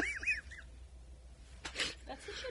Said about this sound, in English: Bird cries.